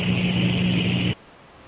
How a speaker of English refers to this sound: That hissing noise?